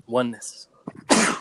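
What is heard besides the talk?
sneeze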